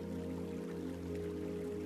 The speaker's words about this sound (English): picture with me for a moment a vibrant waterfall pouring over moss-covered rocks, cascading down into a pool of water, refreshing and clean. The sound of rushing water drowns out all other sounds.